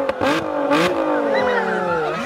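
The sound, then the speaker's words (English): A car engine revs up loudly, its pitch climbing then sliding down in a sustained throaty roar, with a couple of brief hissy bursts at the start. “Oh, we're revving.”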